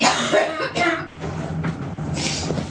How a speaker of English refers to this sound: I'm sorry. I had a coughing jag. So I know. You heard that.